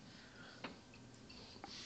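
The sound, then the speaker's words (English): A quiz countdown clock, set to 3 minutes for a rapid-fire round, ticks quietly, two soft ticks about a second apart over a faint steady background hiss, with no one speaking. “if you could put that in place, producer Ross, that would be fantastic. There we go. 3 minutes on the clock.”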